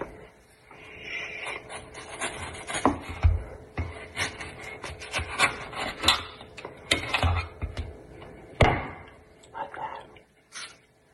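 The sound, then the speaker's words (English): A mango being cut: a run of soft wet scraping and rubbing, punctuated by several sharp knife-on-board taps and clicks spread irregularly over the stretch. “The cutting of the mango, the squeeze of the lime, the sprinkling of the coarse sea salt, the mouth-watering bite into the juicy mango.”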